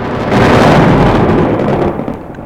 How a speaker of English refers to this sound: Yes, Shazam. Oh, the thunderclap should have hit again.